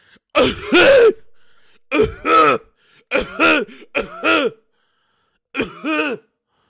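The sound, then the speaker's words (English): A voice imitates an older lady's harsh, barking seal-like cough, repeated in four loud bursts with short pauses between, the third and fourth coming as quick double barks. “She was coughing like a fucking seal, dude.”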